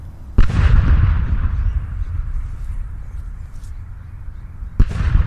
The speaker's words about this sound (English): After the funeral, the Cragmire cannon was fired, and the magnificent boom could be heard for miles.